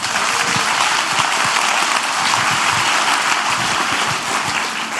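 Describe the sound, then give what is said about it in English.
A church audience applauds news of a ministry training program starting in August, a dense wash of many hands clapping at once, loud and sustained for the full stretch with no voices over it. “And we should clap for that, church.”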